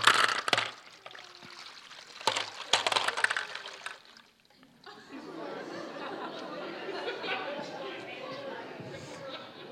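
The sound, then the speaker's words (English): Liquid pours steadily into a container, a dense, continuous splashing that fills the second half, preceded by a few sharp clatters and indistinct background voices. “Keep doing it. Keep pouring Jesus in.”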